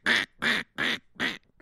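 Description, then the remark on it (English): A person imitates a duck, giving four loud, nasal quacks in a steady, evenly spaced rhythm, followed by a faint short sound. “Why am I quacking after every animal?”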